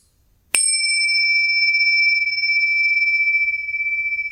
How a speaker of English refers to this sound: For some very weak bell ringing. I was trying to get gentle.